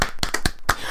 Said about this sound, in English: Man, can we give him a flipping round of applause, guys? Not a slow clap. That sounds sarcastic.